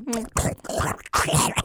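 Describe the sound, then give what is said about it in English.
A voice makes gross, wet slurping and pig-like grunting eating noises in a few loud bursts, with snorts and smacking sounds running together. “I mean, that's the noises you would make if you were to eat a blob of Jell-O the size of your head and shove it in your mouth all at once.”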